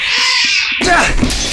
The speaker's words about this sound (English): Get him, Jezebel! Get off of me! Get the cat off of me!